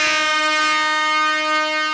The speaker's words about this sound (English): Had to hit the air horn on him. He can't hear it, though.